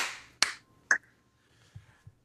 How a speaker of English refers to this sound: You know, once again, the cis guy has the last word. Let's all clap in.